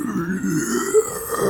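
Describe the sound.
A voice imitates a guttural roar, acting out a character's rageful slash at a rat in a dice-rolled game battle: one sustained, low, rasping growl held steadily for about a second and a half, loud and gravelly with no words.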